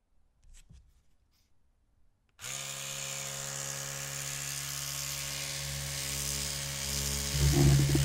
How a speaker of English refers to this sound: Right, first I want you to listen to this. This is, the toothbrush?